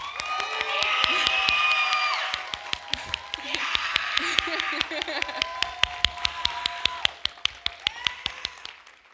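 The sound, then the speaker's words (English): A church audience claps steadily in a quick, even rhythm while voices cheer, whoop and shout to thank their pastors during Pastor Appreciation Month, loudest at the start and easing slightly before swelling again near the end. “And I just want everyone to go ahead and just, with the biggest applause and uproar and scream and shout”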